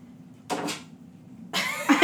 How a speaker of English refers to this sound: That's Leela clawing at the door. With an opinion.